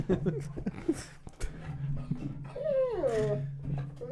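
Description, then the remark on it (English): A dog named Maker lets out a drawn-out whimper that slides downward in pitch, with a few shorter whiny sounds earlier, over a steady low background hum. “Anyway, dog's here.”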